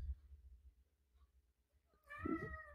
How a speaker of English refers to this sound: What? Cat. Oh my god. Kitty, no.